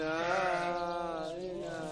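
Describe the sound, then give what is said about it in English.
A sheep about to be slaughtered bleats in one long, wavering cry that fills the whole moment, loud, with no other sounds around it. “After the sheep is killed, air is then blown in to separate the skin from the flesh.”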